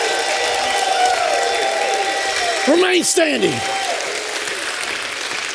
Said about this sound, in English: Give God a hand. If God's been good to you, will you stand and give God a crazy hand clap and a shout of praise?